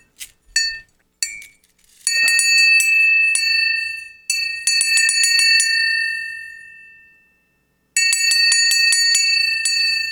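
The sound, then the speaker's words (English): A bright metallic bell, one that has been through an atomic blast, rings repeatedly in quick, rapid strikes, with long shimmering tones sustaining between bursts and a brief pause before the ringing resumes, loud with no talking. “This was I've tried to get that bell for 15 years.”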